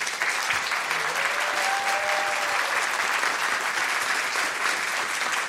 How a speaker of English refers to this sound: Tweeters in the audience, give yourselves a big clap. And please welcome to the stage the extraordinary John Elder Robeson.